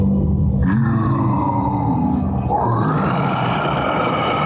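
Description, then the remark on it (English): A huge Loth wolf growls deeply and loudly, a rough, rumbling snarl held for several seconds with a shift in tone partway through, continuous with no talking. “with Ezra and the, you know, like, I don't know what to call him, but the giant Loth Wolf”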